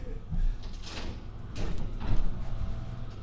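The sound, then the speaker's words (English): A door is shaken and rattled by an angry person at it, with a few scraping, knocking bursts before sliding open, fairly loud over a low background rumble. “The raging bull is at the door, shaking it.”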